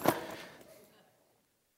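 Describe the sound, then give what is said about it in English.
A short, bright jangle of keys being put into a bag, one metallic clatter that rings and fades out within about a second, followed by near silence. “Excellent, keys.”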